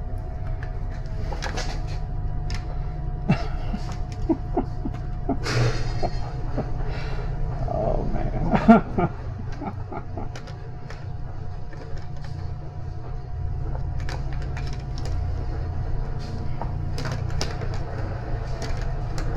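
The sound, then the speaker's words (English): A garage door closes with a steady, low mechanical drone and scattered clicks and rattles, including a louder clunk partway through, with no one talking. “That garage door is open, and that's fine, but are they going to do any blowing or anything?”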